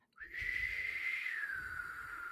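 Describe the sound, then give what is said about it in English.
Someone whistles the theme tune of the Maniac Cop film series, holding one long, steady note that drifts slightly higher and then slides lower near the end. It is fairly clear, with no talking over it. “I can't whistle. But was it that fucking theme song that carries through from this entire series?”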